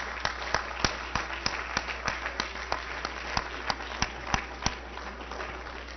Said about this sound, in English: Set your Bibles down and give him a hand clap of adoration. Hallelujah.